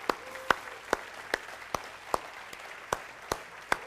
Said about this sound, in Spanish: Y le va a dar un aplauso al Señor, dale un buen aplauso, de verdad.